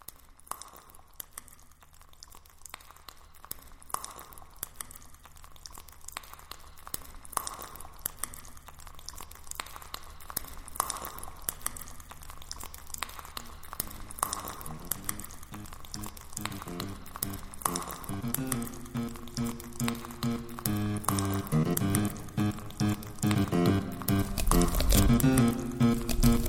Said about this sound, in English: And if I put my ear really close to this bowl, I can hear a tiny crispy symphony coming out of it.